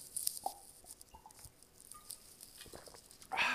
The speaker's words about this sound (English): Excuse me, I'm going to have a drink of water.